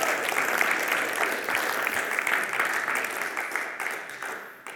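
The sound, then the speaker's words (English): An audience gives the Lord a hand clap in thanks, a dense, steady wash of applause that stays loud for several seconds before easing slightly toward the end. “Let's give the Lord a hand clap and let's thank Him tonight.”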